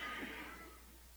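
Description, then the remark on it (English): An audience imitates sheep with a loud, overlapping chorus of baa sounds that begins strong and then trails off within about a second. “I mean, here, everybody, let's give our best sheep sounds. Let's do our bah.”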